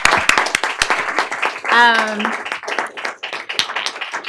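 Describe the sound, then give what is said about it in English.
An audience applauds a discussion panel at the end of a conversation, with steady, dense, overlapping claps, and one person lets out a brief whoop or cheer partway through. “I want to give a huge round of applause to our panel.”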